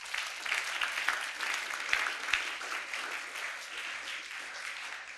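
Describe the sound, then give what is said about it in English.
A church audience breaks into steady applause, a dense wash of many hands clapping at an even level for several seconds, with a few sharper claps standing out, and no voices. “I thought you were going to clap.”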